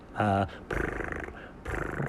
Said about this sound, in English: Oh, look, honey. The cat's making his purring noise.